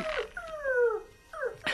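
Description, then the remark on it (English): Snowy, Tintin's dog, whimpers in two drawn-out, high whining cries with a brief pause between them, fairly clear, with no talking. “It seems your dog has sixth sense.”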